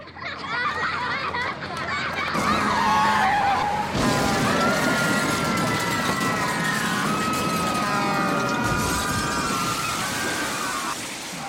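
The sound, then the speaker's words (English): Busy traffic with tires squealing in long, wavering screeches over a steady, loud roar of engines, while children's voices shout and chatter underneath. “Looks like those kids rolled right into traffic.”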